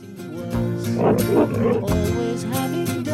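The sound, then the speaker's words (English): Harsh, aggressive pig grunts in a song's mono mix burst out in a rough cluster over a steady musical backing, loud, with snorting growls rising and falling for about a second. “So the first pig sound is quite more prominent in mono and more aggressive sounding.”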